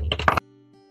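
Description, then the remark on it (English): A quick clatter of dice being handled, a few hard clunks and clicks rattling together for under half a second before everything falls quiet apart from a faint low hum. “Are you rolling dice? I'm just messing with my dice, yes.”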